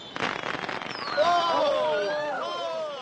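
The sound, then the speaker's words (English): Fireworks go off at a party: a quick run of crackling pops, then several shrill whistling rockets that rise and fall in pitch and overlap as they fade. “Then I shall go back and sit in the house. Just for the fireworks, should I catch a fluxion de poitrine?”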